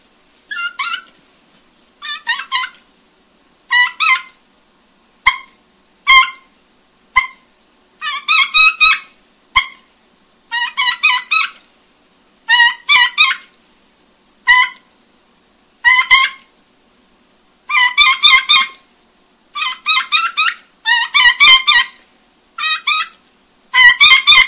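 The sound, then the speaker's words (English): A voice imitates the call of a lost young bird looking for its sisters or brothers: a long series of loud, raspy, high-pitched yelps in short repeated bursts, alone, with brief pauses between groups. “Well, I'll demonstrate, get an idea of a young bird who's been lost, and then just kind of looking for one of his sisters or his brothers out there.”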